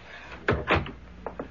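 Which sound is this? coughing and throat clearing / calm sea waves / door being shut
door being shut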